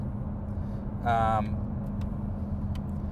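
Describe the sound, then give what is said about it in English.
A car's exhaust burbles low and steady throughout, a continuous rumbling drone, with a brief higher tonal sound cutting in for a moment partway through. “And I don't know how much of that is them opening up the butterflies and the mufflers or what, but all of a sudden you get this nice burble.”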